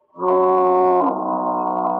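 A single long, loud foghorn blast in the radio drama Big Town: a deep, droning tone rich in buzzy overtones that holds steady for about two seconds, turning slightly duller partway through. No voices.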